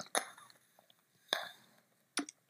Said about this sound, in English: Bitch, that's a drink. That is a drink of water from space. I'm drinking space water.